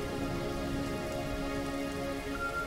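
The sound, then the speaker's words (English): Steady rain falling, a continuous dense patter of drops on a surface, with a faint sustained musical drone underneath. No voices, moderate and even throughout. “Rain.”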